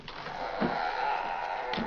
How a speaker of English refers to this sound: All right, shut that door.